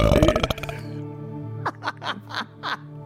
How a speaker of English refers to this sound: Before she talks, as she talks, she releases the longest belch she has ever released in her life.